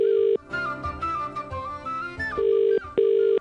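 An unanswered phone line rings with steady, buzzing tones while calling a pub in Temple Bar, Dublin, Ireland, on St. Patrick's Day: one burst at the start, then a pair of short rings near the end, with a stretch of music in between.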